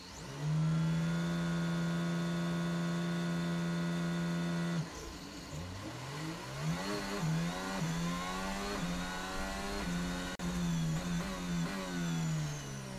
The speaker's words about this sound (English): Last car is now approaching the grid.